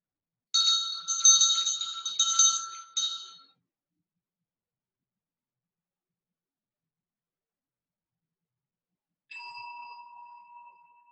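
During a sitting sound meditation, a bell is struck and rings out with a bright, shimmering tone that fades into long silence, then a second strike rings clear and steady until the end. No voices.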